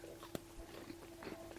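Quiet chewing of food near a microphone, with one sharp crunch early on followed by soft, irregular mouth noises over a steady low hum. No one speaks.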